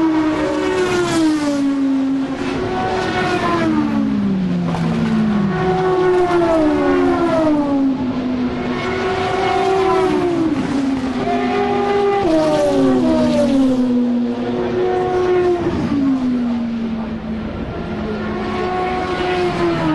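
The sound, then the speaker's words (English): Race cars at Le Mans scream past one after another at racing speed after completing the first lap, a Peugeot leading and Astons among them, each high engine whine swooping up then dropping in pitch as it goes by, loud and continuous with no talking. “They've completed the first lap at racing speeds and they're going to pass us again now with the Peugeot leading.”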